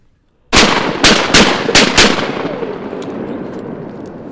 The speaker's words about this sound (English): shoots a duck, and her British Labrador Skeeter is off to retrieve it.